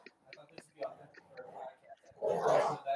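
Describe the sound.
Two pit bulls bark in agitated bursts in the background, growing louder toward the end, with people talking quietly over them.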